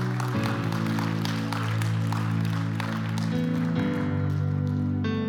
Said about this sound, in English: Yeah, you can clap to the Lord.